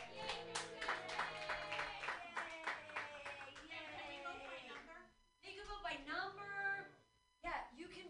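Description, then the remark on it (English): A comedy show crowd claps steadily for several seconds for the comedian, with cheering voices mixed in, before the applause fades and a person starts talking. “So clap for me, yay!”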